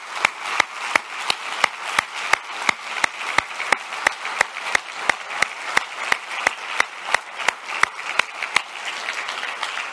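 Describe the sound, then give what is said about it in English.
A crowd at a Pentecost Sunday service applauds steadily for the full stretch, a dense hiss of many hands with one sharp, even clap beating through it roughly three times a second. No voices are heard. “Can we just thank God and give these folks a big round of applause who are among us?”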